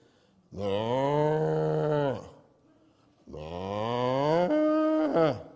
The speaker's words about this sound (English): And when that mama starts to make her noise, those calves go straight to their own ma. And they all sound just alike to me.